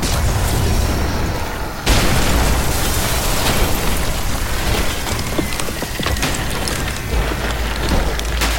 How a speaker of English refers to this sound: The Scream Eater and his victims vanished under an avalanche of rusted beams and struts and sheet metal.